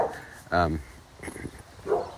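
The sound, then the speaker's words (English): A dog gives one short, loud bark close by, followed later by a softer bark or yelp, with faint voice sounds in between. “Hello, dog.”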